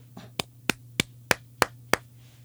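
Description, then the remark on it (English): A quick, evenly paced run of about six sharp, crisp hand claps by a woman, with a low steady hum underneath and no one talking. “And I bucked back up at her, and she clapped.”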